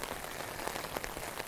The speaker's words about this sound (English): So I don't know how you feel about the rain.